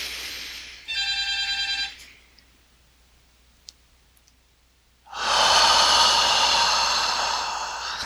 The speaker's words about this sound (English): I think she might be ringing the doorbell right now.